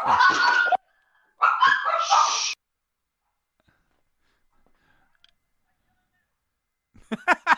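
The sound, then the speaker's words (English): Dogs bark: two harsh, loud bursts early on, then a long quiet stretch before a rapid run of sharp, high barks at the very end. “Oh God, the dogs have decided to bark.”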